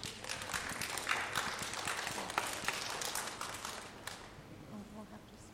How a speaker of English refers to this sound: Congratulations, you guys. Give them one more round of applause while they find their seats.